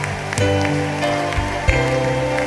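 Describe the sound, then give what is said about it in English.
A crowd claps steadily, giving the Lord a hand clap of praise for Jesus, a dense patter of many hands blending into a continuous rain-like roar, with sustained musical tones humming underneath and a few louder accents along the way. “I want you to give the Lord a mighty hand clap of praise. Come on, clap for Jesus.”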